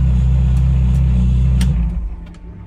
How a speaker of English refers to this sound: Okay, I pulled in now. I pulled in. I just did one parade lap because I want everybody to know who I am. And I got to start taking things off. So I'm going to turn off the engine.